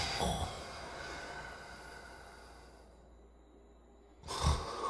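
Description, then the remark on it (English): A father snores in his sleep, a rough breathy snort at the start, a long drawn-out hissing breath fading quietly, then another loud snorting inhale at the end. “Dad, you're snoring.”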